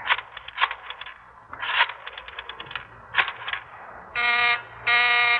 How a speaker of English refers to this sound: I called the booth and the line was busy.